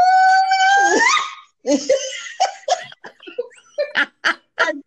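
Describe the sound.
A voice imitates a pastor's wild yell heard during a church service in California: a loud, high-pitched sustained cry rising in pitch for about a second, then breaking into choppy, whooping vocal bursts and laughter-like yelps.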